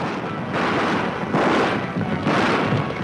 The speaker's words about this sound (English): That sound from the 1933 remake of the original 1925 The Thundering Herd, which was a silent film and which unfortunately has been lost to time. But whatever movie they were making, the filmmakers needed a thundering herd.